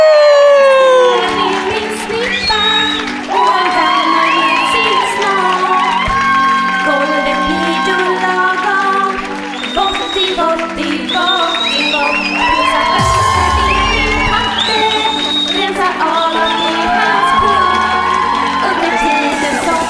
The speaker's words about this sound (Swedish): Men nu, plats på scen för kvällens huvudpersoner. Ge mig en varm applåd för